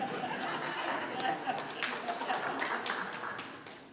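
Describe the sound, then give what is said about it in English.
Scattered claps ring out from an audience over a steady murmur of crowd chatter and light laughter, the sharp hand strikes irregular. “Did somebody clap?”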